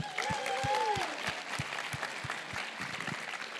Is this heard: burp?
no